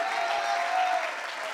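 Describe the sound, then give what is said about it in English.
A crowd claps their hands together in a steady, dense burst of applause, even from start to finish with no voices standing out. “Does anybody believe that? Can you clap your hands?”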